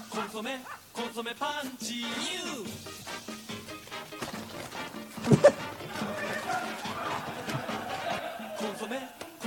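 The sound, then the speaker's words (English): A series of dog barks from a television commercial, from a real dog, a fake dog and a person imitating a dog, comes in short bursts over a busy background of voices and other sounds. “There are so many uses of different types of dogs. A human dog, a fake dog, and a real dog.”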